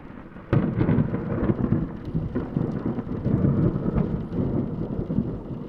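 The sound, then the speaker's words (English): A sudden crack of thunder breaks into a steady roar of heavy rain lashing against the windows of Peldergrin Hall after heavy snowfall, pounding on with deep rumbling underneath. No one speaks. “Outside, the heavy snowfall gave way to calamitous thunder, and great lashings of rain began to assault the windows of Peldergrin Hall, as the interior of my wife's bedroom was intermittently illuminated by blinding flashes of electric blue lightning”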